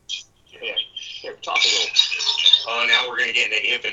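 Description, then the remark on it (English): Voices layered over themselves in a thin, phone-like echo, speech repeating and smearing together almost continuously for a few seconds, as audio from a live stream feed feeds back after its volume is turned up. “Yeah, we've got a little bit of an echo on your end, but I sound great.”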